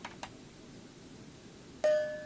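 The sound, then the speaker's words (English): A camera, triggered by pressing the circular button in the middle of its remote, clicks its shutter twice in quick succession as it takes a picture, followed after a pause by a sharp onset and a steady, high electronic tone that rings on. No one speaks. “That shutter sound, you could hear it take the picture.”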